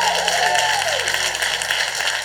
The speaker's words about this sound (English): Well, why don't you give Jesus a great big round of applause this morning?